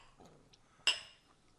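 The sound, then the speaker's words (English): A single bright clink of glasses touched together in a toast, with a short ringing tone that fades over a quiet background. “Hey, well, cheers. So cheers. Cheers. Cheers. Cheers.”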